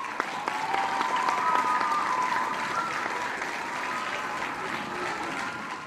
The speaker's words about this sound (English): Go ahead and throw some applause in right here.